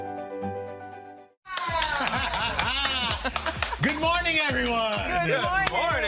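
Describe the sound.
A short burst of hands clapping after a quiet tonal opening, the claps mixing with excited voices and bits of laughter that continue loudly to the end.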